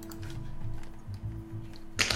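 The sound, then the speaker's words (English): Real dice roll on a table: a light clatter of small objects knocking against the hard surface, ending in a sharper, brighter rattle near the close, over a steady low background hum. “Rolling real dice just feels better, doesn't it?”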